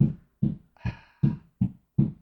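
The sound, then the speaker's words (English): Six hollow knocks on a door in a steady, evenly spaced rhythm, each a dull low thud; the third has a brief ringing edge. No voices. “There's somebody knocking.”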